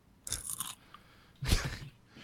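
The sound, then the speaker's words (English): Loud crunching as a bug is bitten and chewed, in two sharp bursts about a second apart, with quiet in between and no talking. “I'll try to give you some crunch ball.”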